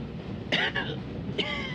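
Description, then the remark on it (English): An old man coughs in two harsh, rasping bursts about a second apart, each trailing into a strained, throaty wheeze as he cannot get his breath, over a steady low background hum. “Coughing his head off.”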